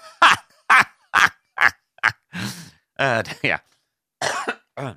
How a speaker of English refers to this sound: Bit of a cough there, people. Not a dry cough. Don't worry. Don't worry. You're not going to catch anything.